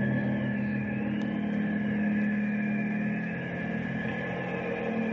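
A helicopter's steady, droning engine hum with a low, throbbing rotor texture holds at a constant loudness for the whole stretch, with no voices.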